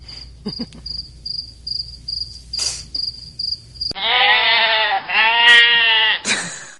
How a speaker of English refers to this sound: All those times when we hear a comedian bombing, you know, making a joke, and there's silence except for crickets. What if those crickets are actually cracking up?